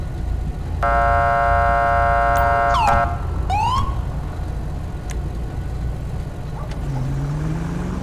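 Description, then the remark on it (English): A police car sounds a loud, sustained horn blast, then two quick rising siren whoops over a steady engine and traffic rumble, with no talking. “On the siren and the horn.”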